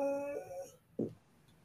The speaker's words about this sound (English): Dog. He likes the storyline too.